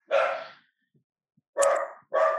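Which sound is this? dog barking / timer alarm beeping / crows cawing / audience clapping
dog barking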